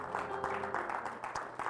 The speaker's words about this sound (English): Give God a praise clap, if you will. We receive that.